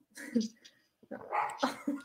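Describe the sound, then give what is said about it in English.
A dog barks in a few short, fairly loud bursts, with a brief pause between, and what sounds like human voices mixed in. “I hear a dog.”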